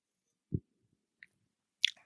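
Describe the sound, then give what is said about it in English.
Someone quietly sips a Pinot Noir red wine, with a soft low bump, a faint tiny click, then a brief airy slurp and mouth sound. No one speaks. “And I'm going to take a sip right now because why not?”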